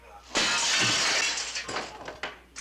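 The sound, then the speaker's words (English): A pane of old, non-safety window glass smashes with a sudden loud crash as something is thrown through it, followed by a scattering of tinkling shards falling over the next couple of seconds, sharp. “He throws that through his window and goes outside his convertible.”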